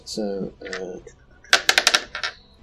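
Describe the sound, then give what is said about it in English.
Brief speech, then dice are rolled for damage in a tabletop game. They rattle and clatter onto a hard surface in a quick burst of about six sharp clicks before settling, one die landing cocked. “That's technically cocked. Yeah, roll it again.”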